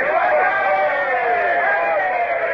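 A crowd of men, a boarding party climbing up the side of a ship together, raises a sustained, loud cheer, many voices overlapping in a continuous roar that holds steady for a few seconds without any clear words.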